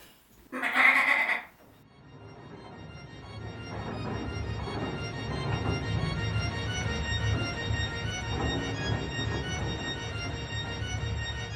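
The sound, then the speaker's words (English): A goat lets out one short, loud bleat near the start; afterward a steady, low rumbling background fills the rest, with no further calls. “Hey, goat, get over here!”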